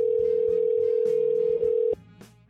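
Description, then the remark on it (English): A steady, unbroken telephone line tone drones for about two seconds as a call is placed to someone in the next room, then cuts off abruptly, leaving faint background clatter and a soft click. “Are you actually calling her? Damn straight.”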